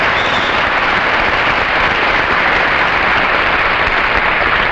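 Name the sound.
crowd cheering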